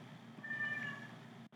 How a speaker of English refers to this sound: I apologize if you can hear my cat helping break down the draft. Hopefully she'll be quiet from here on out.